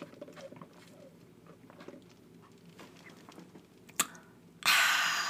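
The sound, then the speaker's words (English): Sipping iced coffee through a Dunkin' Donuts straw: faint rustles and a sharp click, then a loud, airy slurping hiss that runs to the end, with no one talking. “I know we all missed my little sippy sip sound.”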